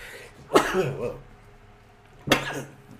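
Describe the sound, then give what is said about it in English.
Two sharp, explosive sneezes burst out about two seconds apart, each trailing off into a brief voiced tail, with no talking around them. “Make me sneeze over here.”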